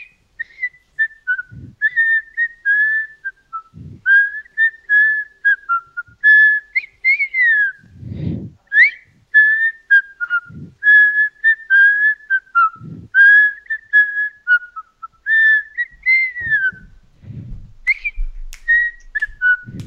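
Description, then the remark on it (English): A person whistles a slow, soulful melody, clear, with phrases rising and falling steadily and soft low thumps now and then beneath it; no one speaks. “I just killed it on the whistle. For the Frisco Bay.”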